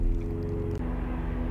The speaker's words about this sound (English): Okay, pausing for the plane. Like, where is the airport?